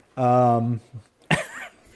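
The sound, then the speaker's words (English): A person vocally imitates a little dog: a sustained, whiny tone followed by a brief pause and a short, sharp yip, fairly loud. “little dog noise in honor of Steve Anderson.”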